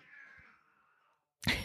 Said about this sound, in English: Cat fight for you.